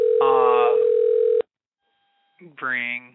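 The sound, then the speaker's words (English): A loud, steady telephone ringing tone of an outgoing call to a guest sounds for about a second and a half while a voice talks over it, then a brief fainter tone follows before someone speaks again. “Ring. Yeah, we're ringing. Our guest better answer.”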